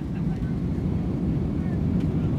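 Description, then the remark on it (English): A loud, steady roar of airplane engines fills the scene, a deep continuous rumble like a jet speeding down the runway for takeoff, with no pauses or breaks. “Every time we speed down the runway and the wheels lift off the ground, I get giddy.”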